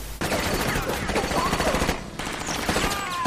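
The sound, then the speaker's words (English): Loud, rapid bursts of automatic gunfire in a movie scene crackle almost continuously, a dense rattling barrage with a brief drop in intensity near the middle before the shooting picks back up. “I don't see a guy being able to continue to shoot after that, specifically because where it hit him.”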